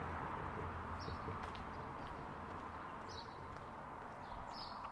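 Brief bird chirps pop up every second or two above a steady, low outdoor rumble of traffic dying down, on a British summer day after the rain has gone, with no one speaking.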